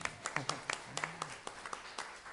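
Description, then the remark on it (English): Scattered, light audience applause for the genetic counselors at a conference: a dozen or so sharp, irregular claps rather than a full ovation, fairly quiet, with a faint low voice murmuring underneath. “So let's hear it for the genetic counselors.”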